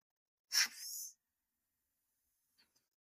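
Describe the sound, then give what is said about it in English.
A single forceful breath rushes through a Breather Fit respiratory training device during a demonstration, a brief airy hiss with a raised whistling tone lasting under a second, followed by quiet and two faint clicks. “Yes, it's a breathing device that will help with your lung health and breathing capacity.”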